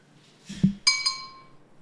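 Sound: glasses clinking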